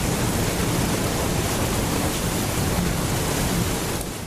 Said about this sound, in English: Look at the wheel just starting to run. We put water on the wheel, and now the mill is powered by water.